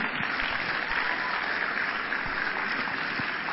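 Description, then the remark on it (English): Steady, sustained applause from a church audience at the Makarios Church headquarters, a dense wash of many hands clapping at even loudness throughout, with no pauses or voices standing out. “Oh, keep clapping.”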